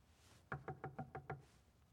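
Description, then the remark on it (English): Six quick, evenly spaced knocks rap on a house door, fairly loud, with a hollow wooden thud, followed by quiet. “Praise God they didn't open the door.”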